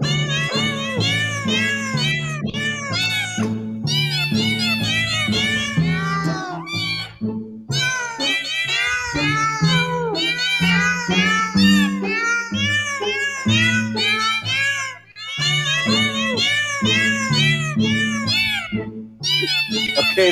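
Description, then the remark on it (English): Cat meows pitched and strung together into Tchaikovsky's Dance of the Reed Flutes from the Nutcracker, a Christmas tune, sung loud and continuous over a steady low musical backing, with only brief gaps between phrases. “We're in the middle of sound bites. Actually, it's Cat Bites, and we are trying to Christmas figure out what this next song is going to be.”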